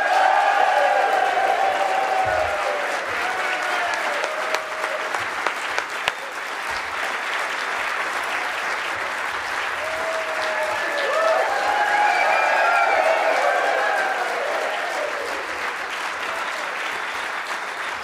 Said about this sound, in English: And they're already clapping. It's fantastic. They are nearly as excited as I am.